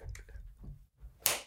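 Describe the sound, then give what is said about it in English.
A single sharp, loud face slap delivered by Will Smith cracks out near the end, rising abruptly above a low murmuring background and trailing off with a brief noisy decay. “Will Smith just slapped the shit out of me.”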